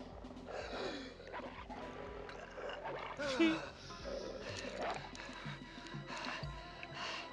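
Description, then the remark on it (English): Dogs snarl and growl aggressively, their rough overlapping cries rising to a loud peak midway through, over a dense, noisy background. “Watch out for the dogs.”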